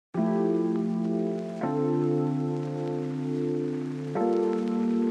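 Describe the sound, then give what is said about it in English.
Sustained keyboard chords from the keys stem of a sample pack, played alone, each held for a couple of seconds: three chord changes at a steady, unhurried pace, with a soft hiss running underneath. “For example, you might just want to use the keys.”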